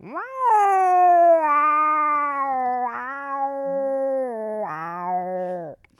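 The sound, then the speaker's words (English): A person imitates a cat with one long, loud, drawn-out meow after reading out a headline, lasting several seconds, wavering in pitch and rising at the end before cutting off abruptly. “It's like me just meowing like a cat.”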